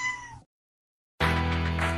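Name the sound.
cat meowing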